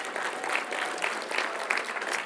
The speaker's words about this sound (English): Yeah, you can give them a clap. That's good.